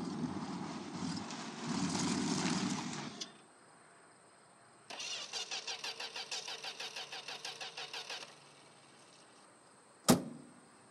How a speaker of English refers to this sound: I held the steering wheel tight and kept driving until I couldn't drive anymore. Halfway to Nashville, my beautiful blue Ford truck started smoking and squealing.